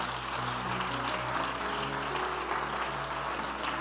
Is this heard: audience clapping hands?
yes